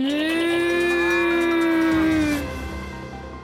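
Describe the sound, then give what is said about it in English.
A single long cow moo on a small farm in Britain, loud, holding a steady low pitch for about two seconds before trailing off into a quieter rumble. No one speaks. “Oh, it turns out there was just a cow behind it.”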